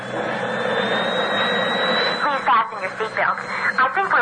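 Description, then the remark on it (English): A Western Airlines jet engine spools up before takeoff, a steady loud roar with a high whine climbing slightly in pitch; after a couple of seconds people start talking over the continuing engine noise. “I think we're about to take off.”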